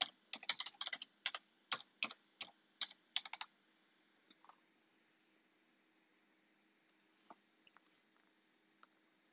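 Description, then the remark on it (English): A quick burst of crisp computer keyboard clicks for about three seconds as someone types a search into Google, then a few scattered, fainter keystrokes over a steady low hum. “Yes, I am typing.”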